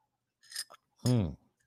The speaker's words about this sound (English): And then take a sip of coffee.